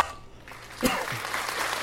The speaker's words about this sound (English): Let's give him a cheer. And a mighty hand clap.